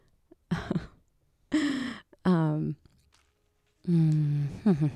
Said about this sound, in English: cleared my throat. Oh God. I guess I can edit out clearing my throat. That's fine to do.